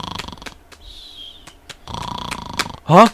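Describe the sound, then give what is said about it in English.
A person fakes snoring with a run of raspy, breathy snore pulses and a thin whistling tone in between, ending in one loud, gravelly snort. “You bored me to sleep!”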